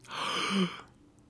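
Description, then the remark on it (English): A single sharp, breathy intake of air, a dramatic gasp lasting under a second, followed by quiet. “Gasp.”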